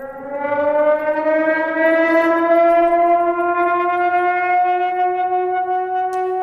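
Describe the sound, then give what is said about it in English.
A loud Cold War era civil defense warning siren, sounded as a test rather than a real alert, wails steadily, its rich harmonic tone slowly rising in pitch and holding for several seconds with no voices over it. “And just so everyone knows, this is not a real siren before this goes out, but let's hear that siren.”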